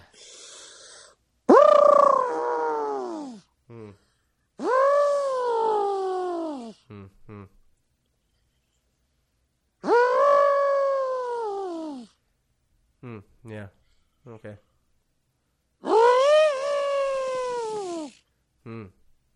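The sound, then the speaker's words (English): A person imitates an elephant trumpeting with four long, rising-and-falling vocal blasts spaced a few seconds apart, each followed by short breathy snorts, loud. “Is that an elephant? It is an elephant.”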